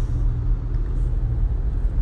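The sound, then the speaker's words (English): A steady low rumble of road noise from inside a moving car, heard over a phone call, constant and fairly loud, with a dull hum filling the low end and no voices. “In a car, on a phone.”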